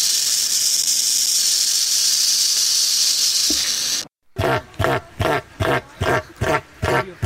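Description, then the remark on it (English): An owl retreated into its burrow: a steady, loud, breathy hiss for about four seconds, a brief break, then a quick series of rasping, rattling bursts mimicking a rattlesnake. “the owl retreats to the burrow and produces rattling and hissing noises similar to that of a rattlesnake”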